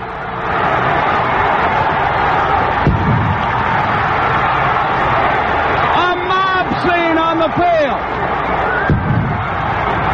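A huge baseball stadium crowd roars in a steady, dense wall of cheering and shouting as the Atlanta Braves win the 1995 world championship on a fly ball caught by Grissom, with brief whoops and whistles rising through the noise midway before the roar carries on unbroken.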